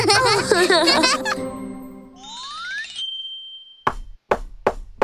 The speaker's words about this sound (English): As soon as Spotty Dinosaur and Peppy Hedgehog arrived at the cake shop, they heard a sudden knock at the door. Oh, Mimi Crocodile arrived.